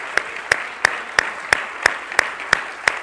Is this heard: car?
no